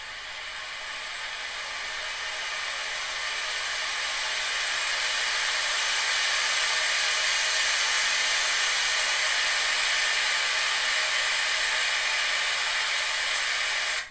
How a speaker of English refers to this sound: It's actually the wind in the trees.